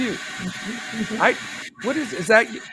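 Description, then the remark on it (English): A steady, hissing whir of someone drilling runs continuously in the background while a person keeps talking over it, the mechanical noise holding an even level throughout. “Somebody drilling some something.”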